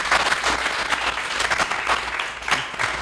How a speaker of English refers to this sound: So can we get a round of applause? Yes. Thank you.